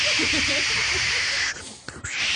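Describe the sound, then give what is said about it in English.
A voice imitates wind as a live sound effect for a 1940s-style radio skit, a steady, breathy hiss lasting about a second and a half, then breaking off in a couple of short gaps before resuming, moderately loud. “Be careful of the wind.”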